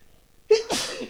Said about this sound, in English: I also moved some stuff around, which flew up a bunch of dust and fucked my allergies up. So you're probably going to hear a lot of sneezing. I apologize ahead of time.